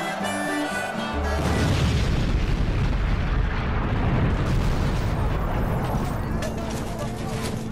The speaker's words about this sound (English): At 2:11 a.m. on April the 27th, 1865, in mid-river, 7 miles upstream from Memphis near Marion, Arkansas, the Sultana's boilers blow apart, and the massive explosion dumps hundreds of people, some dead, some alive, into the cold Mississippi River.